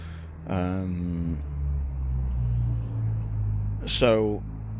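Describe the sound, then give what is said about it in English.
A car's low engine rumble drones steadily, its pitch shifting slightly as it moves past, with two short bursts of voice-like sound rising over the hum. “You'll have to excuse this car.”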